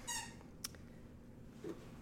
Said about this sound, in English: Bro and your squeaky toy over there.